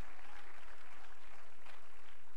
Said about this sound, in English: If you believe that, why don't you clap your hands and let's worship the Lord together.